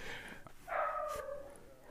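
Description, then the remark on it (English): A dog lets out a drawn-out, somewhat tonal bark, one main outburst after a brief quieter yip, with no talking. “The dogs are feisty today.”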